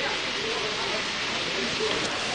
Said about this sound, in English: In the background now, you can hear the waterfall, again, and still in the jungle, and the animal sounds, the birds, and the trees.